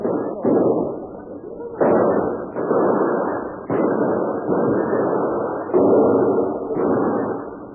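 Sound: gunfire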